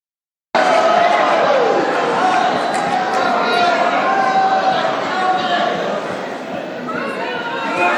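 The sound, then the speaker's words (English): A large crowd in Florida boos candidates Chris Christie and Asa Hutchinson loudly and steadily, a dense wall of jeering voices that starts abruptly and keeps going without a break, with murmuring and shouts mixed into the din. “being booed in Florida”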